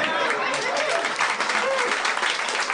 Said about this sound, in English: All right. That's nice to get a... That's probably the first applause he's gotten for that since 1987.